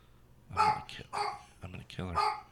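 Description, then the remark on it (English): A dog barks repeatedly because somebody is at the front door, roughly four loud barks in quick succession, with a person's voice talking alongside them. “Somebody at the front door. And then they're also doing a... They'll just bark forever.”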